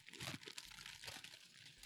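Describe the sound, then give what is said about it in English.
Crackly crunching of a woman eating crisp food, a few irregular bites and chews blending into a continuous rustly texture, fairly quiet with no talking. “everything she eats seems to be crunchy”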